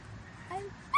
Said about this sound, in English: Let's listen silently to dogs say I love you